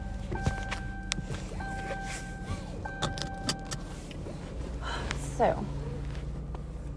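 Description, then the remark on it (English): Keys jingle, a car's chime tones sound, then the car's engine is started, turning over and settling into a steady low rumble. Faint voices murmur in the background. “Anyway, let me get my car started.”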